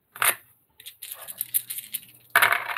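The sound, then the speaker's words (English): Dice clatter and rattle across a table in a few quick bursts, with sharp clicks and skittering taps, loud, ending in a final louder tumble. “Okay, this dice is officially going to die now.”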